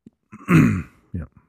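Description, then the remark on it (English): A raspy throat clearing with a harsh burst in the middle, followed by a couple of short, quieter coughs. “I still have my fucking cough from hell, and I'm hoping that some whiskey might help.”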